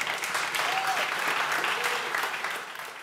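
Sustained audience applause, a dense steady wash of clapping hands at an even loudness for about three seconds, fading slightly at the end, with a faint whoop or voice briefly rising above it.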